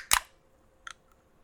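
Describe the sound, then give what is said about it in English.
A can of Wegmans brand passion fruit sparkling water cracks open with one sharp, bright pop, followed by a softer, shorter snap of the tab and a faint tick, with no talking. “I'm cracking open a delicious Wegmans brand passion fruit sparkling water.”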